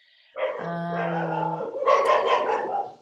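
Dogs bark and vocalize, starting with a drawn-out, whining tone that breaks into a rougher, noisier burst of barking for a few seconds, with no one talking.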